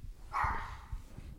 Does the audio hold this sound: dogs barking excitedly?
yes